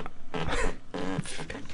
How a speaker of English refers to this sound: That's my desk chair squeaking up against the desk.